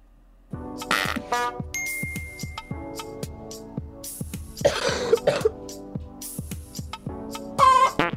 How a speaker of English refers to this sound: Was there like a girl coughing?